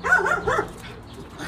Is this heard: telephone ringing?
no